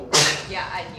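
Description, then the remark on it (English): A single sharp sneeze bursts out suddenly, loud and hissy, then fades quickly as people keep talking over it. “Bless you.”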